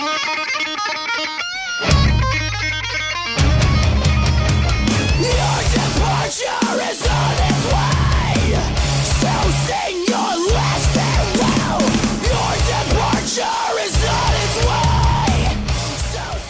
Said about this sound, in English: There are some pretty dynamic guitar parts. Melody and scream patterns are solid. I definitely recommend it.